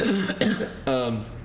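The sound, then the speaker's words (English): A person coughs three times in quick succession, fairly loud; the first two are short harsh bursts and the last is a longer, throaty, voiced cough. “So STDs are coughing. Got me scared.”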